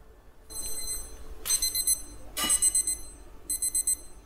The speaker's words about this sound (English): Okay, that's the timer.